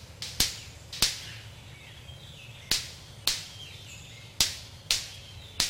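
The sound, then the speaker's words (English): A golden-collared manakin hits its wings together above its back, producing about eight loud, sharp snapping cracks, some in quick pairs, spaced irregularly over a low background hum with faint bird calls. “And they also do this remarkable thing where they take their wings and they hit them together above their back, and it produces a loud snapping sound.”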